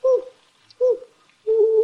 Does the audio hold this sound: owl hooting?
yes